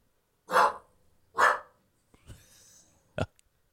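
A recording of a dog barking plays as someone walks in: two quick, loud barks, then soft panting or huffing before one last short, sharp bark.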